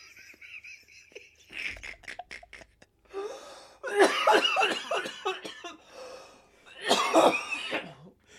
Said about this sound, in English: Don't throw up. God damn it. I was already coughing when you fucking got me.